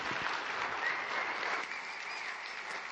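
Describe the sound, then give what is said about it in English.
Steady applause from a sizable audience welcoming guest speaker Avi Snyder in the morning, a dense wash of many hands clapping at once, sustained at an even level for the full stretch with no voices standing out. “Would you please put your hands together and welcome this morning Avi Snyder.”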